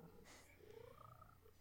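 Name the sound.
cat purring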